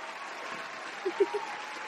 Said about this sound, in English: Applause and applause. yeah. Give a nice long applause.